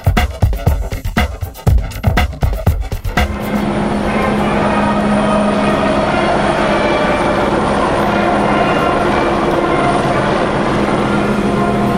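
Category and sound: vehicle, helicopters flying overhead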